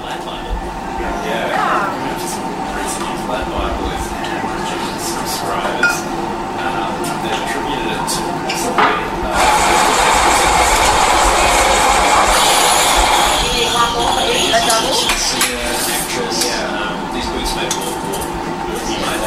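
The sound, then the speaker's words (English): Busy cafe ambience in the Sydney CBD: a steady wash of background noise and murmured chatter, with scattered sharp clinks and clatters of dishes throughout, growing louder and denser for a few seconds near the middle. “A listener kindly sent in some audio that they captured at the scene.”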